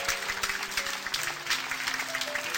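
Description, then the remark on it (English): A few people applaud themselves, clapping steadily for a couple of seconds, a dense patter of sharp hand claps over soft background music with sustained tones. “You're applauding yourselves.”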